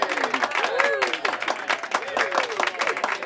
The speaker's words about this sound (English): Round of applause.